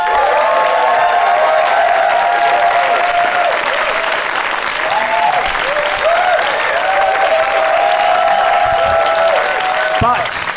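A live audience at the Pleasance, voting by applause in a show, bursts into sustained, loud applause with scattered cheers and whoops rising above the dense clapping throughout, ending abruptly.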